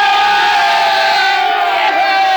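A crowd of men gives three cheers for a man, cheering loudly and steadily, their voices blending into one sustained roar of shouting for the full couple of seconds without a break.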